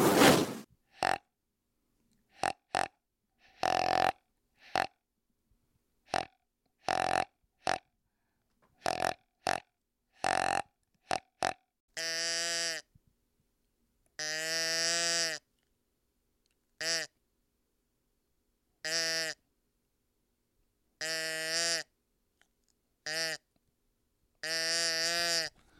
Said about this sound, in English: And those sounds, kind of, those are the cadences I've been using with my grunt tube and my doe bleats. And that basically is what I used.